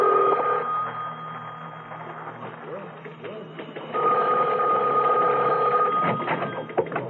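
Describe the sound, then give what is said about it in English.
A telephone bell rings in two bursts, a steady electric trill that cuts off, pauses, then rings again, with faint background murmur and room noise underneath. “Phone. Yeah, I better get phone.”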